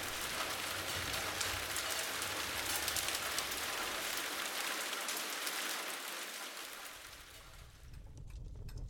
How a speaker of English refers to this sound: Splash, splash, splash. It started to rain.